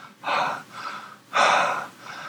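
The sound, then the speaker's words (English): Heavy, rasping creature breathing: slow, loud breaths drawn in a steady rhythm, two strong heaves with softer exhales between, and no voices. “You can still hear this breathing.”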